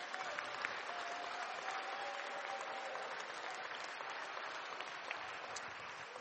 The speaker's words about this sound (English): So shall we celebrate with Liv? Clap, a big clap to God for the opportunity.